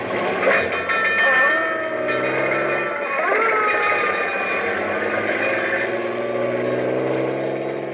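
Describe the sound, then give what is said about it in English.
A fire engine roars along with its bell clanging steadily, a loud, dense rush of engine noise and ringing tones that fills the whole stretch without a break. “We're headed straight for Let's Pretend and the story of Bluebeard, a fire engine with a clang, clang, clang.”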